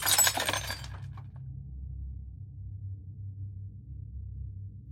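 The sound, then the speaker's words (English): A loud crash of breaking glass bursts out at the start during a struggle in the dark, with shards tinkling briefly before fading into a steady low rumble that continues to the end. “The last thing I remember was the sound of the crashing glass.”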